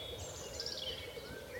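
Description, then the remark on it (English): A chiffchaff sings faintly by a lake on a windy day, giving a few high, thin notes over a steady low rumble of background noise, with no voices present. “I had this lovely idea that I'd come back here and I'd find a willow warbler singing, but chiff-chaffs are in good voice.”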